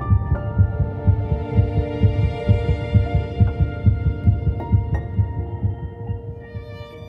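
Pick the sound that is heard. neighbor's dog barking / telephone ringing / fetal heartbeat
fetal heartbeat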